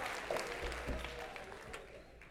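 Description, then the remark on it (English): An audience claps to give God the glory in a dense, sustained wash of overlapping hand claps, steady and fairly loud throughout, with no clear individual rhythm and faint crowd murmur underneath. “Come on, clap and give God the glory.”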